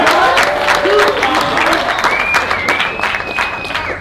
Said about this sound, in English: I know it's very late, but I think we should have a little round of applause for the two-time World Heavyweight Champion.